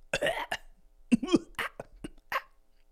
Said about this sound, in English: That's a cough. Which is different than clearing. Well, I suppose clearing your throat and cough can be the same, but for different reasons. Cough, we often think of coming from the lungs, right?